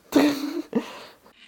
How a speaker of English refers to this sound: I'm sorry for, like, blowing my nose.